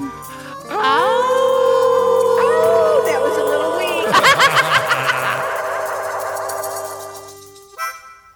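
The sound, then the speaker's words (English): Several voices howl together in long, wavering, rising and falling tones, imitating dogs, then break into a burst of rapid choppy yelps and laughter before fading out. “So I guess here it is. Howl at the moon, dog.”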